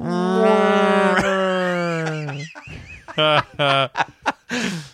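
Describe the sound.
Someone mimics a whale call with their voice as a rating for the film The Wailing: a long, drawn-out, slightly wavering moan for about two seconds, then a few short, choppy vocal bursts.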